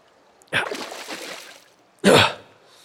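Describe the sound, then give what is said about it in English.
Splashy sloshing as a person crawls on hands and knees through an inch or two of oily water in a concrete pipe: a drawn-out swish of disturbed water, a pause, then a second sharper, louder splash. “I've been crawling for a while now. Seems to only be water making its way through here.”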